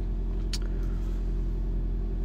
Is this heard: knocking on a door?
no